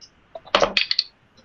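Dice are rolled again to push a roll in a tabletop role-playing game. They clatter onto a hard surface: a burst of sharp clicks followed by a few quick, bright rattles as they bounce and settle, with no talking.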